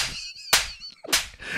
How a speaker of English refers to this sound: And it's all bitch slaps. It is nothing more, nothing less.